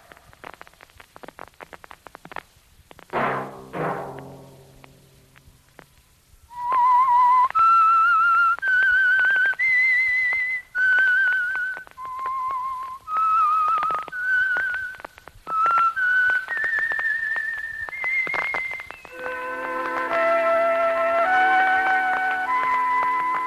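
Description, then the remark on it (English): A brief musical sting gives way to a loud, clear whistled theme melody of sustained, gliding notes rising and falling, ending over a soft held instrumental chord. No one speaks. “Whistle be your signal for the Signal Oil program, The Whistler, each Sunday night at this same time”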